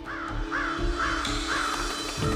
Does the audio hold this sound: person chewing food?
no